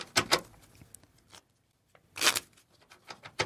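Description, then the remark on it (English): Two quick bursts of crisp, papery riffling from a deck of playing cards being shuffled during a card trick, separated by a brief pause, with a few lighter clicks and taps of cards settling at the end. “So now I'm going to go ahead and shuffle these up.”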